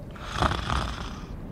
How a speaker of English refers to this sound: Cell. Letizia snores in bed.